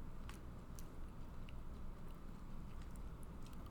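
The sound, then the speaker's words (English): Someone chews and crunches a hard lollipop with their teeth, with scattered sharp cracks over a steady low mouth rumble, no talking. “Hold on, let me finish crunching it.”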